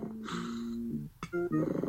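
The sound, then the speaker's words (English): Cartoonish snoring from the sleeping parent characters in the parents' room of the video game Fatty Bear's Birthday Surprise, triggered by clicking on them: a long, buzzy, tonal snore, a brief pause broken by a sharp click, then shorter, choppier snoring sounds, moderately loud with no talking. “Yeah, they snore.”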